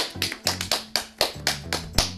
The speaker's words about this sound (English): I don't know what we're clapping about